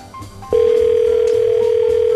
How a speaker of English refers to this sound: It's ringing! It's foreign. I love foreign ringtones. They're so much cooler than ours.